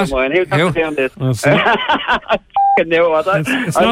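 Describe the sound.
A single short touch-tone beep from a phone keypad, like one digit being dialed, sounds in a brief pause between stretches of lively talking.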